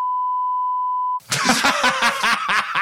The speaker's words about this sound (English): I mean, that seems like something you should beep too. I'm sorry, Jesse, but you have to beep all of that.